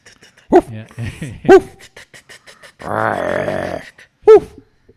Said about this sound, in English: And somewhere in the distance, a dog barks.